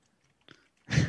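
A short, quiet rustle, then a sudden loud, rough fart blast with heavy low rumble and a noisy hiss on top, cut off abruptly at the end. No voices.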